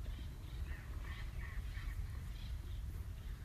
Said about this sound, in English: Listen to the birds who are joyfully waking up with us this morning.